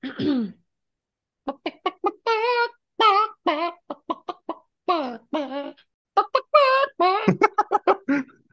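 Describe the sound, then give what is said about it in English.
A group of chickens clucks the melody of a song in a rapid, rhythmic series of bright, pitched bursts that rise and fall like a tune, loud, with a short pause near the start and no talking. “One of them is called …. And they sing a song by … called ….”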